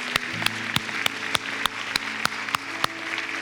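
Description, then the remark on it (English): A church audience applauds God, with a steady wash of clapping and sharp, evenly spaced claps about three per second riding on top, over a soft sustained low tone. “Hey, let's give God a big round of applause.”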